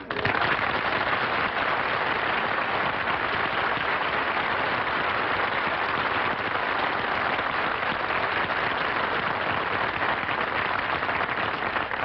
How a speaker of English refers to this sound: I didn't mind the applause he got on his entrance.